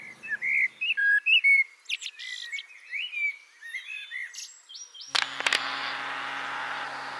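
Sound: blackbird singing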